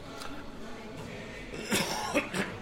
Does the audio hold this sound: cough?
yes